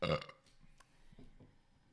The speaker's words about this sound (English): Oi, oi, oi. Oh. I need to burp at a different register.